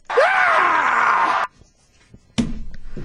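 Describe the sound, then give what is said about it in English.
A single loud, raw scream from a politician lasts about a second and a half, strained and held before cutting off abruptly. After a short silence, a burst of rougher noise follows. “Great screams in political history.”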